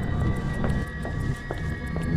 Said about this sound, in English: I can't hear anything but the screeching and screaming of that subway line.